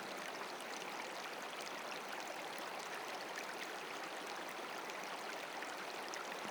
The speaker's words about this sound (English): As the stream flows down the mountain, it enters into a larger body of water, a rushing river, moving, flowing, alive, free.